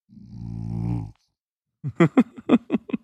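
A sleeping dog snores up close, with the microphone held against it: one long, low rattling breath followed by a brief pause and then a quick run of short, snuffly snorts.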